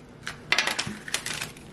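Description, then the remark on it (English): A safety cutter blade slices through plastic wrap on packaging, making several short, crinkly, crackling bursts with a dry scraping edge over about two seconds, with no voices. “And yeah, it did cut it.”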